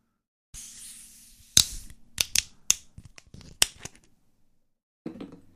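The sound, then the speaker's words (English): A glass Budweiser beer bottle being opened: a soft fizzy hiss runs for a few seconds, broken by several sharp metallic clicks and snaps as the cap comes off, with no talking. “All right, well, let's open it.”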